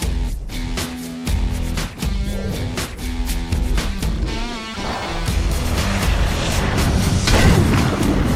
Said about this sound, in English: Okay, now I see why you need the thunder.